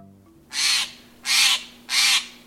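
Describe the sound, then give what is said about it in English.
A Steller's jay gives three harsh, rasping calls in a steady, evenly spaced series, loud, with no other voices and only a faint low hum underneath. “As December days shorten, you may wonder where birds, including this Steller's jay and others, spend the long, cold nights.”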